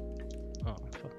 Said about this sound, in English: Burps.